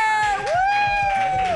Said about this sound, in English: All right. Well, without further ado, ladies and gentlemen, boys and girls, internet trolls, put your hands together. Start clapping now